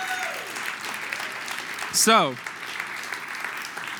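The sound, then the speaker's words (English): Steady audience applause thanking three men who are coming up to join the speaker, a dense crackle of many hands clapping, with a brief high whistle swooping downward midway and a voice speaking a word underneath. “But first, I need you to just give them a round of applause to let them know how thankful you are that they're here.”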